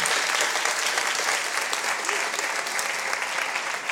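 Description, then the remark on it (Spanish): Sustained audience applause, a dense crackle of many hands clapping at a steady, loud level throughout without pause or talk on top. “¿Le damos un aplauso?”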